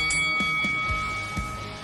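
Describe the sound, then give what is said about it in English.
A boxing bell rings to start a fight, with a bright, sustained metallic tone that hangs steadily for nearly two seconds, over a rumbling crowd-like background punctuated by several dull low thumps. “Now go back to the corner and come out fighting at the bell.”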